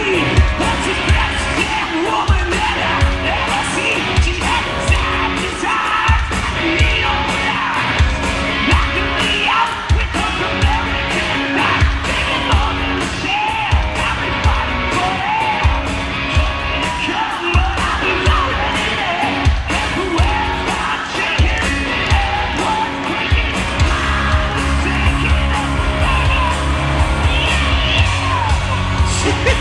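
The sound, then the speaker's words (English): A large crowd roars continuously, with wild yells, whoops and cheers layered over a dense, loud wash of noise that never lets up, overwhelming throughout. “So, I mean, the crowd is going crazy.”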